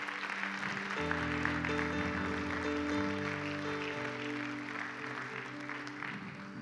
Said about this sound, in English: Come on, give everyone that raised their hand a big hand clap.